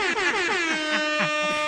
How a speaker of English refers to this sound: Cue the motherfucking air horns, bitches.